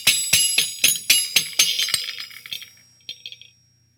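Japanese horse bells jingle in a quick, steady rhythm of about a dozen shakes, bright and ringing, then slow and thin out to a couple of final tinkles that fade into silence.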